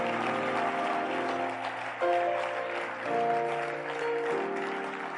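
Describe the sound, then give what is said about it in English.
An audience claps in praise of the Lord Jesus, a dense, steady wash of applause lasting several seconds, with sustained organ-like chords shifting underneath. No one speaks. “Give the Lord Jesus a wonderful clap of praise.”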